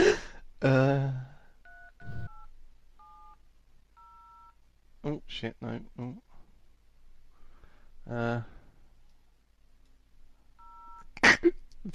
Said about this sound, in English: the tension I'm building as I retardedly type these numbers into my phone is palpable.